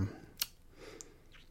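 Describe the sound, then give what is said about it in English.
Paper being shuffled as someone looks through their written notes: a sharp crinkle, then a couple of softer rustles and a brief swish, against a quiet background. “Look at my freaking paper here.”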